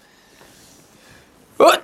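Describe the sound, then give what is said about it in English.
A single sharp, loud sneeze bursts out near the end, following a stretch of near-silence with only faint background murmur. “Bless you.”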